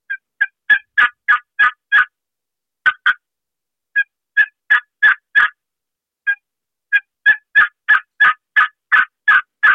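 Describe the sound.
A turkey call imitates a hen's yelping in several runs of short, evenly spaced notes slowed to a proper turkey rhythm, each run steady and unhurried, loud, with brief pauses between series and no talking.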